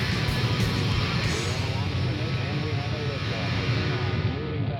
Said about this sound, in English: Saturn V lifting off with power.